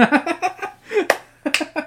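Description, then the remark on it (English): A few sharp, isolated hand claps ring out between bursts of people laughing and giggling, the claps crisp and snappy rather than a steady round of applause. “Stop clapping for me, I got enough.”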